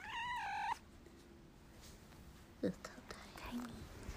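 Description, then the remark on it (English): A very tiny female cat named Tiny Bowie lets out one high, clear meow at the start, then quiet whispering voices and soft rustling fill the rest of the moment. “We have our own cat guest of this episode, Tiny Bowie...”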